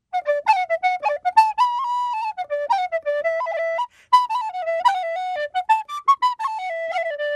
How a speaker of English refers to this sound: 50 years later, the … are still going strong. And the band's leader can still silence a studio with his tin whistle.